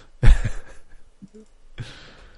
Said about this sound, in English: What, are you just randomly picking shit? Yes, I'm just clicking one of the buttons. Okay. I did a search for cartoon, and I'm just clicking random buttons on the cartoon results.